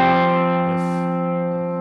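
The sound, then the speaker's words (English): A sustained electric guitar chord rings out through a Strymon Flint reverb and tremolo pedal, steady and fairly loud, fading only slightly, with a brief airy swish partway through and no voices. “And then out of this, we finally go into the Strymon Flint. It really needs no introduction. It's a reverb tremolo thing.”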